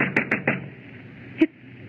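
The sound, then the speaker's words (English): Heavy fist blows thud against a locked door, pounded by people locked inside who want to be let out: three quick, loud pounds in a row, then a pause and one more solid bang, with no voices. “Why is it locked? Because some screwball janitor thought everybody'd left and locked the door, that's all.”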